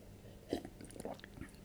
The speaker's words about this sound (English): Dramatic sip for sound effects.